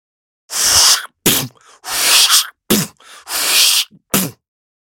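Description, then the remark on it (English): A voice imitates a steam-powered widget stamping machine: three long, loud breathy hisses alternating with short sharp bursts, in a steady chugging rhythm. “Steam powered widget stamper.”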